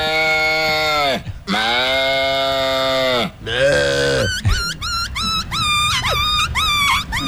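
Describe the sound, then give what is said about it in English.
A man's voice imitates a small puppy: a few long, wavering whines, then a quick run of high yips and squeaks, all loud, with no other talking. “Small puppy.”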